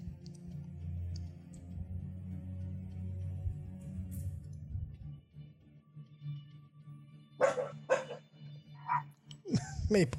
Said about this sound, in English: Okay, so there's dog out. Yeah, and our window's open, so she's barking at him.